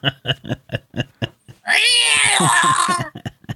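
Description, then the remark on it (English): A few quick spoken syllables, then a loud, drawn-out kitten yowl, a harsh caterwaul lasting over a second that slides downward in pitch before talking resumes. “Like a kitten in a wood chipper.”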